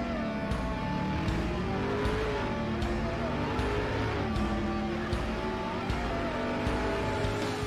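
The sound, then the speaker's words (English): A powerful car engine of the Devil 16, built by Steve Morris Engines with a one-piece billet block, water-jacketed, roars continuously, its pitch sweeping up and down as it revs hard, loud with a deep rumbling growl throughout. “This engine was built right here at Steve Morris Engines.”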